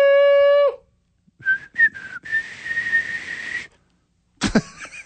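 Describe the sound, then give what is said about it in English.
A weak, breathy human whistle: a couple of short airy attempts, then a longer wavering note thick with blown breath. A brief steady tone opens it and a short noisy burst ends it. “That's a pretty weak whistle.”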